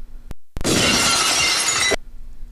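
A glass bottle thrown into a wedding smashes in the aisle on a black and white checkered floor with a sudden loud crash, followed by over a second of bright, crackling shards scattering and tinkling before it cuts off abruptly.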